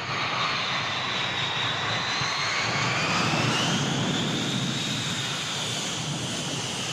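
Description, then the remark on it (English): A steady, loud roar of the jet engines of a huge silver airliner, British Transport Flight 709 arriving from London, taxiing up to gate 4, with a high whining tone that slowly rises and shifts in pitch, continuous for the whole stretch, with no voices. “We watch the huge silver plane taxi up the gate 4 and the engines cough out.”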